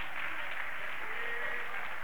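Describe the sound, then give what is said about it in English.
An audience claps their hands together in a dense, continuous patter, a steady wash of many overlapping claps at a moderate level, with no voices standing out. “Everybody ought to clap your hands.”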